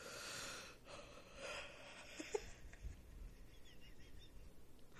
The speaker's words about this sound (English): won't stop yawning, guys. I think it's a disease.